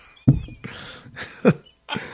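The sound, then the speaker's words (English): Two short, low, buzzy fart sounds about a second apart, mixed in with several breathy, hissing bursts of noise; no one speaks. “Your farts have great comedic timing.”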